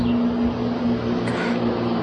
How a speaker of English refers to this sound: Is that an airplane? No, it's a truck.